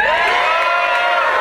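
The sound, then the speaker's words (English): A comedy club audience at Acme Comedy Company in Minneapolis cheers and whoops loudly and steadily, with many overlapping high-pitched shouts forming a continuous roar of enthusiasm throughout. “All right, just for the listeners, there's a lot of people that did not applaud or cheer.”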